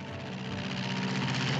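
The propeller engine of Howard Hughes's H-1 racing plane drones in a steady, dense roar, holding constant and slightly swelling as it flies from Los Angeles toward Newark, New Jersey, on a record transcontinental flight, with no voices over it.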